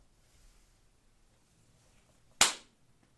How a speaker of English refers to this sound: I'm gonna do a clap.